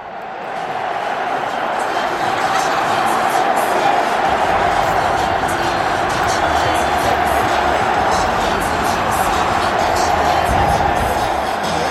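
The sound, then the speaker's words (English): A loud basketball arena crowd of Texas Tech Red Raider fans cheers and roars steadily during a game against Virginia, a dense wash of yelling voices with scattered whoops rising above it and no letup. “Thought Virginia was on the verge of putting it away, but here comes Tech, and here's the crowd. The Red Raider fans taking over.”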